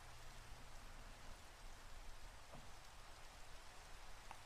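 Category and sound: nature, steady rain falling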